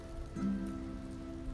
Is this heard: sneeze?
no